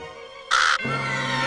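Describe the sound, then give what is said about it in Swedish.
A single harsh, loud crow caw bursts out for about a quarter second, followed by a steady low humming tone. No one speaks. “Tror du inte kråkan verkligen åt upp honom?”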